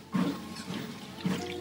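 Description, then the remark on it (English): Two soft gulping sounds about a second apart, someone swallowing water with quiet room noise between the sips. “Somehow, oh, I'll get some water into me.”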